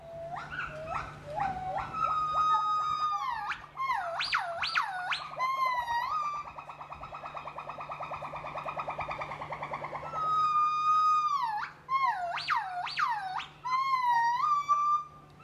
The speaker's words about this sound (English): Many a morning, I would just lie in my sleeping bag and listen for as long as the gibbons were willing to call.